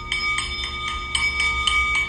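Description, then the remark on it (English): A singing bowl rings with a steady, sustained metallic tone, its shimmering overtones pulsing in a regular rhythm, roughly four times per second. No voices are heard. “The singing bowl exudes positive energy.”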